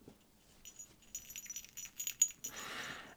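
A small jingle bell on a running top rattles in quick, irregular shakes, giving bright, high tinkling with a faint ringing tone, then a short burst of soft rustling noise. No one speaks.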